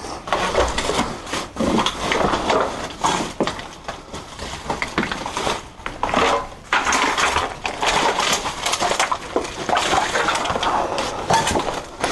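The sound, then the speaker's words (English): Footsteps crunch over broken glass, a steady stream of gritty crackles and sharp little clinks with no pause and no voices. “Watch your step, there's a lot of broken glass.”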